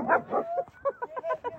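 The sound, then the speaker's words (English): A puppy barks and yips in a quick run of short, high-pitched calls, fairly loud, with a couple of sharper yelps toward the end. “Sorry, for some reason my dog does not like Asian people.”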